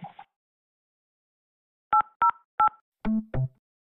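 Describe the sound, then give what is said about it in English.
A short burst of telephone keypad tones: three crisp, evenly spaced beeps followed by two lower, buzzier tones, loud with no talking. “Let's take a phone call to get in there.”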